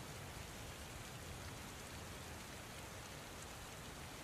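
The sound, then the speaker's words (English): Heavy rain pours down in a steady, dense hiss over the Flanders battle zone in August, an unbroken wash of drops hitting surfaces with no pauses or voices, fairly quiet overall and constant from start to finish. “The intermittent heavy rain continued through August.”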